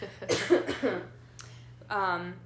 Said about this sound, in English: Oh my god, I'm gonna start coughing.